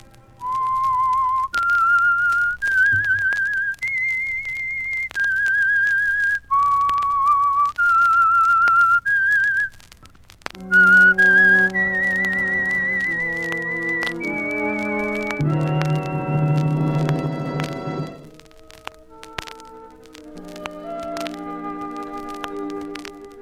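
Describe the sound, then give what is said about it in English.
The whistled theme of the radio mystery show The Whistler: clear, pure sustained notes stepping up and down, joined midway by a fuller orchestral accompaniment with lower tones, then fading into a quieter closing phrase. “Now, here is the Whistler.”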